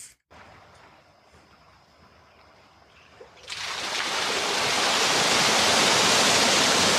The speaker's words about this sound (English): He just hit a remote and a waterfall started, and color entered the video because it was black and white. He started his waterfall pool with a remote.